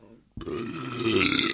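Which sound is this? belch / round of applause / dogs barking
belch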